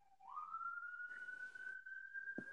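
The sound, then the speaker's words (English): A studio siren effect, not a real emergency, signalling the studio is about to close: the wail sweeps upward from a lower pitch and then holds as a steady, piercing high tone for about two seconds, loud and alone with no voices. “Ladies and gentlemen, if you hear sirens, don't mind it. It's not really happening.”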